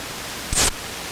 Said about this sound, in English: All I'm doing is I'm pressing my finger onto the receiving post, and you're hearing that electrical transmission inside the ether, or inside the quantum ocean.